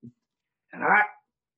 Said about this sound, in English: I'll have to cut this out. My wife just pulled up and all the dogs are barking.